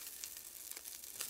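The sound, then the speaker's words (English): Carrots, broccoli and red bell pepper sizzle steadily in a skillet over turned-up heat, a continuous bright hiss with sharp little crackles and pops scattered through it, with no voices. “So I'll just remove these from the skillet so they'll stop cooking.”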